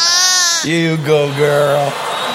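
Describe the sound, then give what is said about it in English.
A loud lamb bleat during lambing season: one long wavering cry that trails off, with a second quavering bleat following and a soft breathy tail, no talking over it. “Do we have a camera on Kathy and the lamb?”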